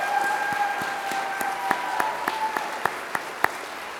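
An audience at a graduation applauds a graduate of Eagle's Nest steadily, a dense wash of many hands clapping with a few sharper individual claps standing out, and a faint whistle-like tone lingering in the background.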